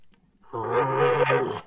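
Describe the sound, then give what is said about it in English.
A person imitates the call of a frustrated bull elk: one drawn-out, low, moaning bellow lasting about a second, fairly loud, with no talking around it. “Uh-oh, there's a frustrated bull over there telling me to stay away.”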